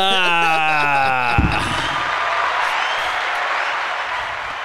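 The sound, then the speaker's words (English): A brief falling tonal sweep gives way to a loud, sustained round of applause from a crowd, dense clapping that carries steadily to the end with only a slight fade. “Can we get another round of applause on that?”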